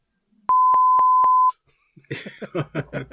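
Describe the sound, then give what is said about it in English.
A loud, steady censor bleep tone lasts about a second at a single pitch, followed after a short pause by a voice starting to talk. “Might have to beep that out if you're not careful.”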